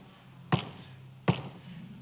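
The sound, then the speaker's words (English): Two solid knocks on a wooden door that has no doorknob on the knocking side, spaced under a second apart, each a sharp hollow thud that rings briefly. The knocks are fairly loud, with only quiet room tone between them. “Jesus says, I stand at the door and I...”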